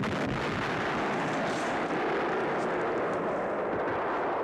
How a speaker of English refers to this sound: It's on target. Count Merbok is killed. The explosion throws Blumkin out the window and into the street.